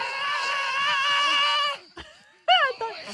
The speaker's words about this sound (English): That's … screaming with him